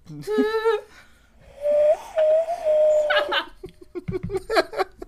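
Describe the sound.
A person whistles a soft, wavering tune into a microphone, imitating a gentle flute melody with a brief trill and then a long held note, before dissolving into giggles and laughter.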